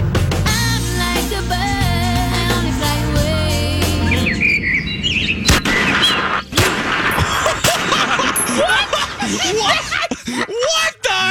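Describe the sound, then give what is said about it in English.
A busy stretch of chirpy bird tweeting from a sound effect gives way to sharp, loud gunshot blasts cutting through the mix, with more scattered tweets and cracks trailing off toward the end. “Wow, we shot the Twitter bird.”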